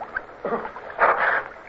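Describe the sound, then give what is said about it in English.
Water splashing in two short bursts, a quick slosh followed by a longer, heavier churn, as someone splashes in cold water beside a swimmer in darkness, with no voices. “Somebody splashed beside me.”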